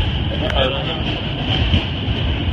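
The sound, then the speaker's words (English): A loud, steady rumble of a subway train fills a station, with a constant high-pitched mechanical whine over low roaring noise and faint, indistinct voices blended into the din. “At the subway.”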